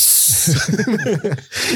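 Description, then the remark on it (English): A voice imitates a snake, hissing a sharp "sss" before and after a short voiced, wavering sound in the middle; loud and brief, with no other talk. It is made while talking about the House of the Snake in The Witcher. “The House of the Snake.”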